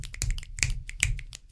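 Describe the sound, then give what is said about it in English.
An audience's scattered finger snaps, sharp crisp clicks overlapping in an irregular patter for a second and a half, fairly steady in loudness, with no voices. “Can snaps be heard if they snap?”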